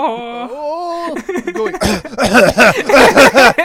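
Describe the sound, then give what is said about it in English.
A voice gives a drawn-out sickly groan, then breaks into a run of loud, rough, rhythmic hacking bursts, mimicking a heavy, chesty cough. “That's the death cough.”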